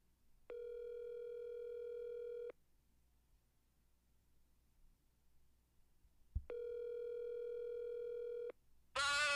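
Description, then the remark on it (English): A telephone line tone sounds twice, each a steady two-second buzz, separated by a quiet pause and a sharp click, ending with a brief burst of noise as the call connects. “Let's see here if we can get our insider on the line here and see what's going on.”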